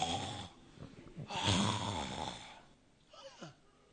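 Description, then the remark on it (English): A man sitting down asleep snores roughly in a few long, raspy breaths, the loudest in the middle, followed by a softer drawn-out vocal sound like a yawn. No talking. “As he's sitting down here, sleeping and yawning.”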